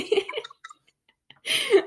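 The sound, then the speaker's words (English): Wet chewing noises from someone chewing in front of a camera: a cluster of smacking, squelchy mouth sounds, a few faint clicks during a brief pause, then another louder burst of moist chewing. “she's like chewing in my front of gosh, the camera.”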